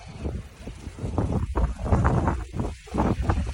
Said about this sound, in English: But it's windy and the tent flew over like 3 times.